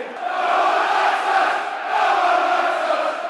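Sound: football stadium crowd noise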